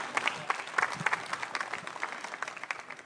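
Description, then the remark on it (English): An audience applauds steadily for a speaker at the end of a seminar talk, many hands clapping in a dense, crackling wash with sharp individual claps poking through. No voices stand out over the sustained applause. “Please clap for her.”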